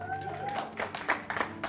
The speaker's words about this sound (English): Well, I thought that deserved a bigger hand clap. That's okay.